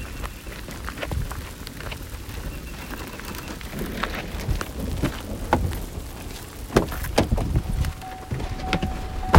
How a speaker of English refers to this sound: Yeah, the rain didn't want to wait.